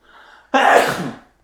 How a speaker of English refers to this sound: Bless you.